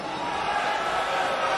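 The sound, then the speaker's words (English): A big wrestling crowd at WWE Raw roars and cheers in one sustained, loud wall of noise, a thick wash of voices that holds steady without a break for under two seconds. “I mean, that's a huge pop. You can always tell when it drowns out the music.”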